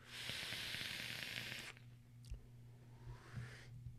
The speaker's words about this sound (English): This is a completely delicious setup. I love the vape. I love the crackle. I love the flavor. I love these O-Frames. Really like this Legal RDA.